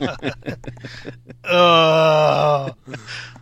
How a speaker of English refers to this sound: We need another sound effect with groaning. People like, oh, that was stupid.